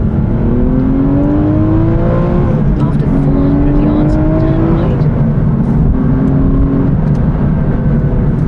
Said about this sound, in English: Being in the company of Aston Martin was quite something, and so is the sound of this car.